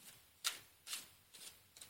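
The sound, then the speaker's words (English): A deck of cards being shuffled in four quick, crisp bursts about half a second apart, each a brief papery riffle, fairly quiet, with no voices. “Until we get this deck shuffled.”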